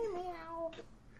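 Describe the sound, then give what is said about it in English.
A single drawn-out cat meow with a gently falling pitch, fairly quiet, followed by a short soft rustle as it fades. “The cat does not want to be on the podcast.”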